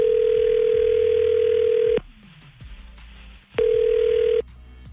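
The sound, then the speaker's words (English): A telephone ringback tone from an outgoing call placed by radio hosts to a listener: a loud, steady electronic purr lasting about two seconds, a short silence, then the tone starting again before cutting off. No one speaks. “we're going to call Madison now with you listening on the phone silently”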